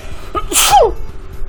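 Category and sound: human body sound, sneeze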